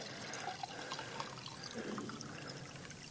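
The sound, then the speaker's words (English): Water pours steadily into a container, a continuous splashing and trickling stream lasting a few seconds with no voices. “See if I can get this. I don't know how much water I've got left.”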